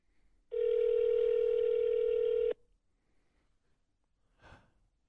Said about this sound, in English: I'm praying he answers. Come on, answer the phone. Answer the phone, man.